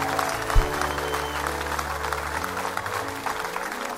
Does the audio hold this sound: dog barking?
no